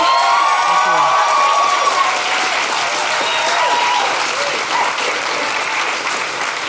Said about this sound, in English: So we really appreciate it. A big round of applause for Jordan Raskopoulos.